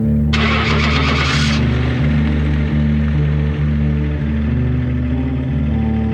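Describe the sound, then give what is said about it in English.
A truck engine cranks for about a second, catches, and settles into a loud, steady low rumble with a faint rhythmic pulse, with no voices. “Well, I reckon we go start up the truck.”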